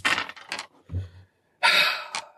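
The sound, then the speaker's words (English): Dice clatter and rattle in two short bursts, with a brief low thump between them. The rolls sound fairly loud, and no one speaks. “Man, I'm rolling dice.”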